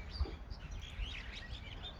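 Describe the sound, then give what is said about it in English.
Birds chirp and twitter steadily in Kenya, a quiet, continuous mix of overlapping calls over a low background rumble, with no one speaking. “Also, seeing as we are talking to them live from Kenya, please forgive us for the bird noises in the background.”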